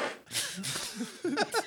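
A voice blows a loud, sputtering raspberry imitating a fart, with a long breathy burst followed by two shorter buzzing puffs, alone, as a gag about someone who farts a lot.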